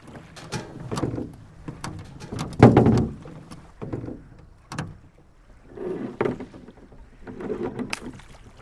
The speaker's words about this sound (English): Come on, everybody, let's get these boats loaded.